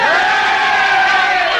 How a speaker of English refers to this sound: Delighted cheering.